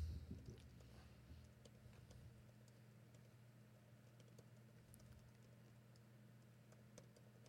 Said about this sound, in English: You're really typing up an email? I have to.